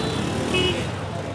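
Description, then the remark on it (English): Dense traffic in a massive city in Ghana rumbles steadily, cars almost on top of each other, a continuous wash of car engines and road noise with indistinct voices mixed in and a brief higher whine partway through. “Everyone's eating, dancing, and cars are unsurprisingly almost on top of each other, making their own unique melody.”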